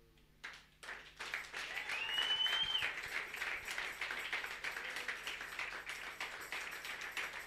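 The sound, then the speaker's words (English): A church audience claps steadily while celebrating the life of their pastor and mama, many hands blending into a dense, sustained wash of applause that swells after a quiet start, with a brief high whistle-like tone rising above it. “The way you are clapping, I'm beginning to suspect you.”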